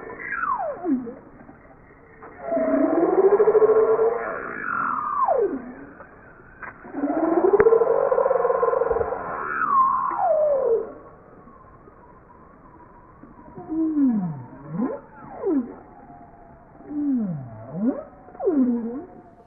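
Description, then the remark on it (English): Arctic whale song from a spring migration up from lower latitudes like the Bering Sea into the high Arctic ice: long, swooping moans and rising-falling calls repeated in phrases, followed by shorter V-shaped upsweeps and downsweeps, with no voices present. “And as they do a seasonal migration from slightly lower latitude like the Bering Sea up into the Arctic, and this is an example of the kind of sounds they make on that, what's a spring migration.”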